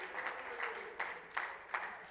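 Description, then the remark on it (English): A crowd claps in a steady rhythm, loud sharp bursts rising over a continuous patter of many hands, with no voices, clapping in praise of God in the evening. “Oh, let's clap our hands and praise Him tonight.”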